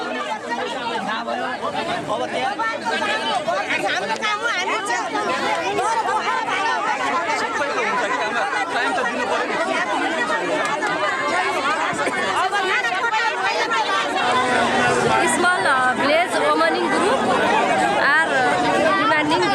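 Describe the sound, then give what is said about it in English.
A dense crowd of villagers chattering and murmuring at once at a road blockade as police clear bamboo and start to move the crowd, a steady, loud babble with no single speaker standing out, continuing throughout. “Clearing the bamboo and starting to move the crowd, just when I think it's over, the old ladies step in and block the road with their bodies, stern-faced and unmovable as Mother Mountain.”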